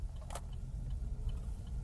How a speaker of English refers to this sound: So I have a long drive ahead of me. One of the benefits of driving this electric car is that I can talk to myself and there won't be too much engine noise in the background because there is no engine.